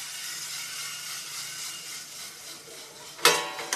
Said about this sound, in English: Once the roaster is preheated to the right temperature, we'll just drop there's a door here. I'll drop the coffee into the roaster, and then we've started the roasting process.